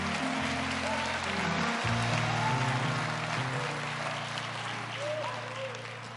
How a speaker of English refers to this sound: Let's get the Lord a hand and clap. Come on.